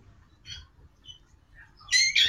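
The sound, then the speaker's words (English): A dog's squeaky toy, heard over a phone call, squeaks in a few high, thin bursts, faint at first, then two loud, shrill squeaks close together at the end. No one speaks. “Does your dog have the squeaky toy and your phone at the same time?”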